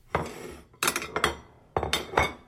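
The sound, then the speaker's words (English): Dishes clink together several times in two quick clusters as they are grabbed to serve a pie, bright ceramic knocks with short ringing tails, fairly loud, with no talking. “Grab the dishes.”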